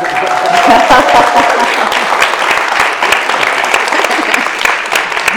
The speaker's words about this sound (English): We're thrilled to be taping at this special live episode in Columbia, Missouri, a couple hours east of where I live, as part of the 2019 Unbound Book Festival. It says here, pause for applause.